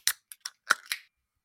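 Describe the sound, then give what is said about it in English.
A few light metallic clicks, then a sharper pop with a short fizzing hiss as a can of strawberry and vanilla bean flavored drink is cracked open, with a slight spray and no talking. “Yeah, it didn't really give a good crack, this one, didn't.”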